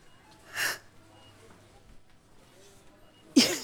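Two sharp, breathy sniffles separated by a few seconds of near silence, like someone tearfully sniffing while holding back crying.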